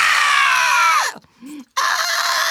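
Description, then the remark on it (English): A shrill, loud mock scream from a voice, its pitch sliding downward, then a brief pause with a low murmur before a second piercing scream bursts out. “I would start off with the screams.”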